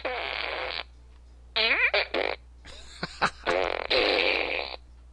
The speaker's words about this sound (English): This is the perfect time for … and … to hit you with the brand new sponsor. This is the Despicable Me Minion Fart Gun. This is where we toot our own horn on the … and … show.